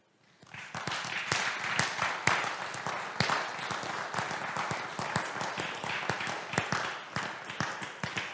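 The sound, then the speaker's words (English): A church audience breaks into steady, loud applause and cheering to celebrate the women standing up. It swells within the first second and keeps going, a dense patter of many hands clapping for several seconds without letting up. “If you were at home watching online, you could just stand in your living room, and we were cheering for you too, you know?”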